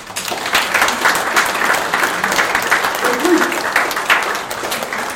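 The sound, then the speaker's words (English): Steady applause from a sizable audience, dense rapid clapping that fills the room at a fairly loud, even level for several seconds, with faint voices mixed in underneath. “Can we give them a hand clap?”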